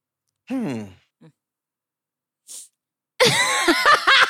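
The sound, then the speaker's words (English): A sneeze: a drawn-out, voiced wind-up, then a brief breathy burst, followed by loud voices talking over one another. “God bless you.”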